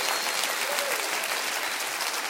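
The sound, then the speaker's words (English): A crowd claps steadily, a dense wash of many hands applauding at an even, fairly loud level for a couple of seconds, with no voices standing out. “Clap your hands and say, "He is alive tonight.”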